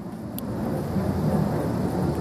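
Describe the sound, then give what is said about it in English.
A military aircraft flies overhead near an Air Force base, its engines a steady, loud low roar with a broad rushing hiss that holds constant throughout. No one speaks. “They gotta listen to planes on your podcast”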